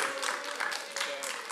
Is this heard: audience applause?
yes